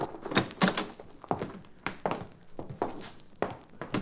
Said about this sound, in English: I'll open the door.